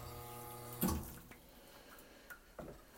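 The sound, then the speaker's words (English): An espresso machine group head flushes water: a steady pump hum cuts off into a sharp hiss and splash, followed by a few faint drips and clicks, with no talking. “So let's start by flushing our group as usual.”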